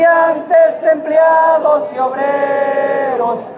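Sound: crowd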